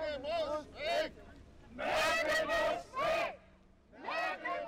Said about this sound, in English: Now they're yelling, Merkel muss weg, Merkel must go. Not only because she's part of a system they think is corrupt, but also because of her decision to let in refugees.